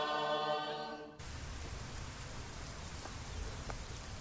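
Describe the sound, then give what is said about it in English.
A brief buzzy, harmonic tone cuts off abruptly, giving way to steady rain falling, a dense hiss with occasional distinct drops and no voices. “I'm running around the block in the rain.”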